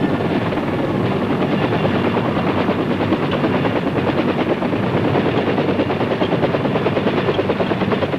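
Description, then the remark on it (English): A military helicopter's rotor runs steadily, a loud continuous throbbing chop with a low engine drone, filling the whole stretch without letup and with no voices. “As a safety precaution, the M60s may not be armed on the flight line, so the chopper is moved to a different part of the field where the rocket pods are armed and the gun barrels are put on.”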